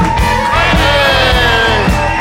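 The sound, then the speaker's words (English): A live crowd at Spiky Ball Studios cheers loudly and continuously during the last Live from the Dutch Hall performance, with overlapping whoops and yells rising above a dense roar and a few rhythmic thumps underneath throughout. “We actually have a live crowd here at Spiky Ball Studios.”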